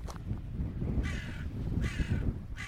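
Three harsh crow caws ring out at a steady pace, loud, over a low, rumbling background with no voices.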